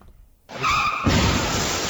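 A car crash sound effect: a loud tire screech wails for about half a second, then a heavy crunching crash bursts in and its noisy debris rumbles on to the end, with no voices.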